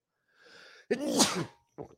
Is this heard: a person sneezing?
yes